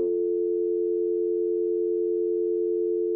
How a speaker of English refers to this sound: This is when you just insert dial tone audio.